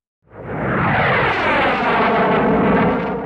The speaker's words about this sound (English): That was my jet flying over.